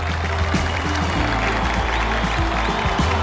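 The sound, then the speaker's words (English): A dense, steady roar of crowd noise fills the whole stretch, loud, like a large audience cheering and clapping without pause, at a band's induction into the Rock and Roll Hall of Fame. “The audience cheers and goes wild.”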